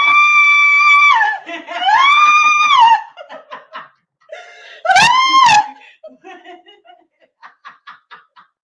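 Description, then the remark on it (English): A person lets out loud, sustained screams as a demonstration of hollering for help, several long high-pitched wails broken by gasps and breathy laughter between them. “You could just scream, too.”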